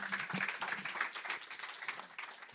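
A crowd applauds steadily, many hands clapping in a dense, continuous patter that holds for a few seconds and eases slightly toward the end.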